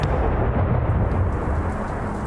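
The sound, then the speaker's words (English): Steady rain hisses over a deep, continuous rumble of thunder, loud throughout, with no voices. “The only bad part about it is when it rains.”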